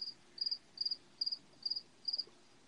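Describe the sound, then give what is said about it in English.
Repeated cricket chirps in steady bursts, about six evenly spaced trills over a quiet background, each a quick pulsing high-pitched chirp at moderate volume with no voices. “Somebody really came with some crickets.”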